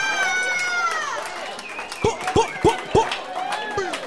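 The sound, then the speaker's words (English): An audience at the end of a live show whoops and cheers with swooping, rising and falling pitch, then four sharp, evenly spaced claps ring out before the cheering tapers off. “Everybody clap it up.”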